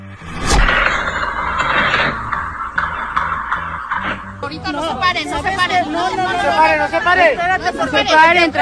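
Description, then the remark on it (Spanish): Gunshots at a children's football match outside the multiforo of Zacatecas: a sharp gunshot cracks out over a noisy crowd, followed by a few more bangs, then a swell of shouting and children's high-pitched screams. “Son los balazos que usted acaba de escuchar, que dejó como saldo 4 policías muertos.”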